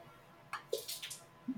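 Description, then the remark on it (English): A drink is poured out onto a hardwood floor, a few quiet spatters and wet drips over a second or so, faint, with no talking. “Did you just pour it onto your floor?”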